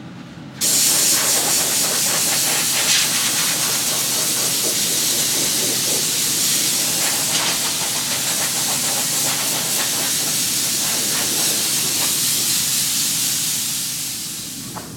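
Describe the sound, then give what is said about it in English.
A loud, steady rush of an air blower drying a cat's fur and fluffing it up, kicking on abruptly and roaring continuously before tapering off near the end. No voices are heard. “I'm gonna blow his hair around, kind of fluff him up a little bit, and let him sit there and dry.”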